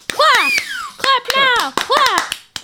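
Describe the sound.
Sharp, bright hand claps, roughly a dozen in a loose rhythm, ring out over high-pitched voices whooping and drawing out long sung vowels.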